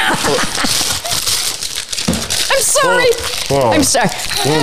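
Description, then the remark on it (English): Paper crinkles and crumples with a steady crackling as it is being eaten, while voices talk over it throughout. “He's eating paper.”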